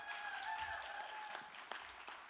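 Steady applause from a church crowd for the two directors of camps sponsored by Thrive, a dense wash of many hands clapping at even loudness throughout, with a couple of brief sustained tones ringing faintly underneath.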